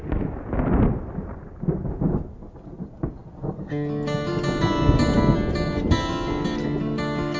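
A deep, rolling rumble of thunder with steady rain hiss fills the first few seconds, then guitar-driven music comes in and plays over the lingering storm noise.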